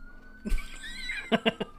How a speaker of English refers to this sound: Sirens. That means take a shot.